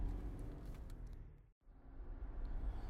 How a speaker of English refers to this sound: I'm driving to work.